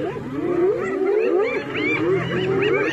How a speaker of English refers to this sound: It's that lazy male lion. Listen to that noise.